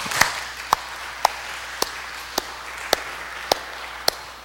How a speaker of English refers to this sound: I think it is more than appropriate that we give a hand clap of praise to what God is doing in our confirmands and to celebrate the moment.